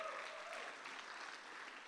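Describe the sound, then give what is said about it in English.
An audience claps together as a clap of praise to God, in steady, dense applause that fills the whole stretch without letting up, with no voices standing out above it. “Come on, if you're believing God, let's give Him a big clap of praise.”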